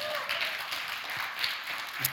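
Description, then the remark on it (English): A crowd at a church service claps for the speaker's visiting in-laws in a steady, dense wash of applause that holds at an even level for a couple of seconds, with a few sharper claps standing out near the end. “Would you give them a clap for my in-laws?”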